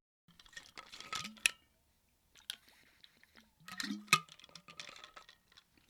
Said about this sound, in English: Had to get a quick water break.